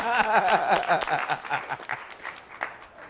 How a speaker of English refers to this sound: Well, we appreciate you sharing your story. What questions do we have from the audience? Let me give a round of applause for that. Come on.